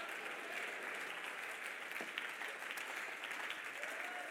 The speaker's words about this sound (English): I want you to jump to your feet with me right now. Clap your hands and shout, there's about to be an exodus.